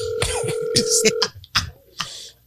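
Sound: telephone dialing and ringing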